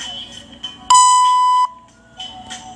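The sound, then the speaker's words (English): A workout timer sounds a single loud, sustained electronic beep lasting under a second, signaling the end of a 15-second exercise interval and the start of rest, rising sharply above quieter background sound that continues before and after it. “And then we're going to rest in a few seconds once you hear that timer go off.”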